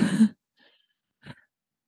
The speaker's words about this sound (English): I'm sorry, I'm sniffling. I'm crying, obviously.